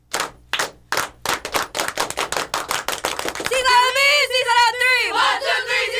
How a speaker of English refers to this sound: All right, ladies, congratulations and good luck to you on your journey, okay? Thank you. All right, one more round of applause for yourself.